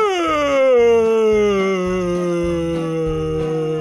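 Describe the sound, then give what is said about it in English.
A big, drawn-out vocal yawn: one long, loud, breathy tone that starts high and slowly slides lower, lasting about four seconds with no talking. “Okay, we all know what a yawn is.”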